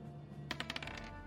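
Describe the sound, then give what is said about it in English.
Dice clatter across a hard tabletop in a quick burst of sharp, bright clicks that bounce and settle within half a second, over a faint steady room hum, as a player rolls for initiative in a tabletop game, landing a 19. “The Australia dice came through”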